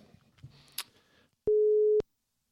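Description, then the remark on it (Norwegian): A single steady ringing tone of an outgoing phone call to a guest sounds loud and clear for about half a second, after a moment of faint background rustle. No one speaks. “Ja da, det ringer.”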